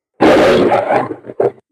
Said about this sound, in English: Let me try lion. Oh, my God. All right. This is a lion.